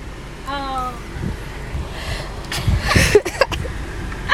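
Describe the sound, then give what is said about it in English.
Steady low road and engine rumble from inside a car driving to a family barbecue, with a brief tonal vocal sound near the start and a few sharp rustles and knocks toward the end. “We're driving in the car today.”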